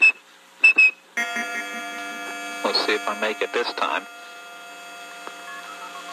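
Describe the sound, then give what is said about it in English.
After a brief spoken line, a steady telephone dial tone hums while someone whistles a quick run of about seven or eight short tones, fairly loud, to trigger the telephone network switches and place a call, then the dial tone continues alone. “If you had perfect pitch like blind phone freak …, you could whistle calls through the network.”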